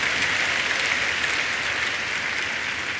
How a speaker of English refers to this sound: Come and give him thanks, everybody. Celebrate Jesus. In Jesus' precious name, we have given thanks. Amen. Give the Lord one more time a big clap offering.